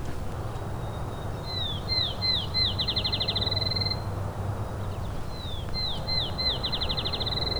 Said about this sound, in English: Here is a field sparrow.